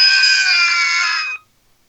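Several voices of a family scream together in one loud, sustained, shrill burst lasting just over a second, a family "Iceland scream", then cut off abruptly into silence.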